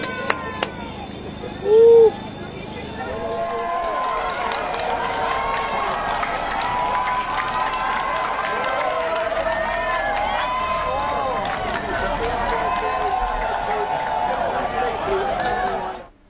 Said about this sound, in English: People were on the streets cheering and clapped when the ambulance ferrying them on their last leg of their journey. I think this is a video of the ambulance.